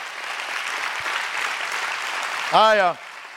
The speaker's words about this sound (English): Clap your hands real big for that.